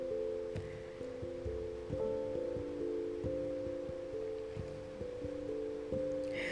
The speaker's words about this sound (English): This rain is sounding hard.